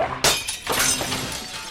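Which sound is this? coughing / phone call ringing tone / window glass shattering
window glass shattering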